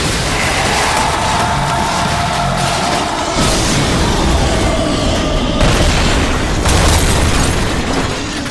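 A loud, sustained roar of a flaming car smashing into a pack of monsters and exploding, then tumbling and cartwheeling, with dense rumbling and crackling debris, surging again around the middle and near the end. No one speaks.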